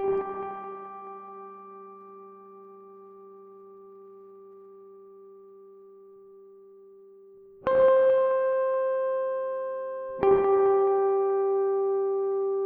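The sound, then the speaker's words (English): Three clear, bell-like guitar harmonic notes ring out alone with an echoey sustain: one long-decaying tone, then two more struck close together near the end, like drops of water. “Next, I added the sound of a guitar harmonic layered with some echoey effects so it sounds almost like drops of water.”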